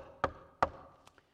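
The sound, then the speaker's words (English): Two loud, sharp knocks on a hard wooden surface, evenly spaced, followed by a couple of much fainter taps, with no talking. “You know, Jesus is knocking.”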